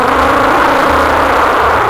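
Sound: airplane engine roaring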